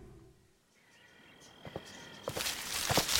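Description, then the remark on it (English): Footsteps crunch through dry leaves, starting faint and growing louder and busier, with a thin steady chirp of birds or insects in the background. “Footsteps and leaves.”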